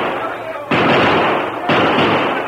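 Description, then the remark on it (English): Two loud gunshot sound effects, about a second apart, fired at a fleeing masked rider and missing him, each a sudden harsh burst that leaves a sustained noisy roar behind it, over a constant hissy background. “Ah, shoot him, drill him.”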